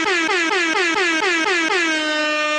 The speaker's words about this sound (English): Air horns.